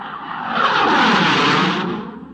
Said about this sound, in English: A daily Royal Air Force sortie of howling, low-flying jet fighters is less welcome.